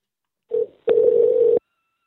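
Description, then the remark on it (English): Telephone line tones: a short beep followed by a longer steady ringing tone, clear, with no voices around them, as a call is placed back to a woman. “Let's call her back.”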